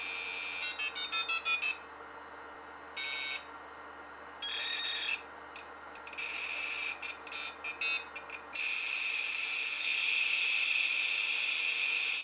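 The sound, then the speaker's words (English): A dial-up modem dialing up to the internet, with dialing tones and clipped electronic beeps giving way to a steady, hissing screech of handshake noise. It plays alone at moderate volume, with no voices. “The sound brings back nostalgia in the sense I remember the era, but it drove me nuts, is the old modems you had to use to dial up to the internet. And that infamous noise it made, and then your phone would be busy.”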